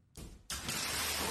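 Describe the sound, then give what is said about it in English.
A stunt diver's body slams into the top of a glass pane as he stops himself with his arms: a short burst of noise, then a louder, harsh impact that carries into a sustained rushing clatter, with no talking. “Actually, you know, I think he hits like the top of the glass and kind of like stops himself with his arms.”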